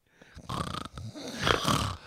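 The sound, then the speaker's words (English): A voice imitates snoring with two rough, rattling drawn-out snores, the second louder and more nasal, with no other sounds around it. “Pass out 3:30 in the morning. Snoring. Snoring.”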